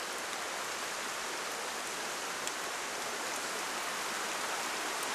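small creek flowing

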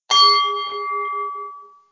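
bell ringing

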